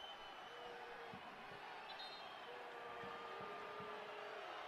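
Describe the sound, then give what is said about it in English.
A large stadium crowd at a soccer match boos in the 89th minute as the leading team wastes time over a corner kick. The boos form a sustained, droning wash of disapproval, steady and loud from start to finish, with no clear voices standing out. “Crowd's booing.”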